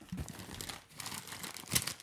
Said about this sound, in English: You have an actual paper magazine. I haven't seen one of those in so long. This is paper, children. This is what paper sounds like.